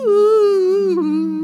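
An eerie siren-song effect from an ambient track playing in the background of an evil interlude: a single sustained, wordless vocal-like tone, rich in overtones, holding steady then dipping slightly in pitch, layered over a low humming drone. No one speaks.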